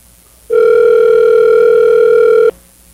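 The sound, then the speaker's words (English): A telephone call tone while calling a car technician: one loud, steady electronic beep held at a single pitch for about two seconds, then cutting off abruptly. No one speaks. “So let's give John a call.”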